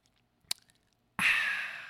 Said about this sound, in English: Hold on. I'm going to let you think about that while I take a sip of this delicious Monster Zero.